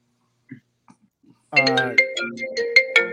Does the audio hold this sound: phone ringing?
yes